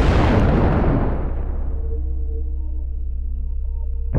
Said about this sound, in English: There's an explosion. Howard believes that it was a Claymore mine, which is a big explosive that's full of pellets, think BBs. Think a bunch of BBs attached to an explosive that it blows up and it just sprays BBs out towards you.